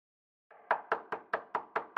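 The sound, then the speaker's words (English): Someone pounds on a door with a quick, steady series of about seven loud, sharp knocks, with no voices. “Open the door!”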